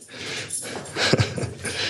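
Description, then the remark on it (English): A female dog at home, excited about being taken for a walk, pants rapidly with short breathy huffs and a brief snort or whimper partway through, over a low background hiss. “We are back home now, taking the dog for a walk, and she is excited.”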